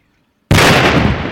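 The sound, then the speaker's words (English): A controlled detonation of a cluster bomblet, one element of a high-explosive fragmentation bomb, blown up on the spot: after a brief silence, one sudden, loud blast erupts, then a dense roar of rumble and debris that continues without fading much. “They blow up the cluster bomblet on the spot and then move the heavier bombs to a different location for a massive controlled explosion.”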